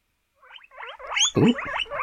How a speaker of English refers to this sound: Oh, yeah. Marvellous. Guinea pig is an awesome animal.